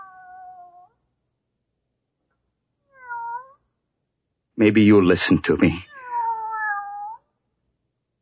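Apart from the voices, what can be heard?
cat meowing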